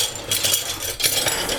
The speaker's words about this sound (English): Just getting the tongs out.